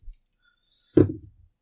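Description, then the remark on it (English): Dice rattle briefly with quick, bright clicks, then land with a sharp clatter on a hard surface and tumble to a stop, rolled for a perception check and showing all ones. Fairly loud, with no voices. “Ones. Wow. Just all ones. Snake eyes.”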